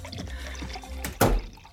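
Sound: drink poured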